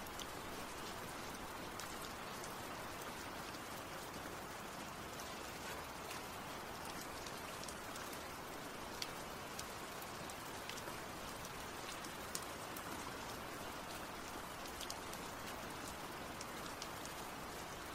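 Steady rainfall patters without a break, a dense hiss of countless drops with occasional sharper individual splashes ticking out above the constant wash. No voices are heard.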